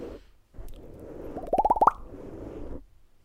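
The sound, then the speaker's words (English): A quick run of about six wet, bubbly ASMR bubble plops, each a little higher in pitch than the last, rising over a soft, steady low hum. “ASMR. Bubbles.”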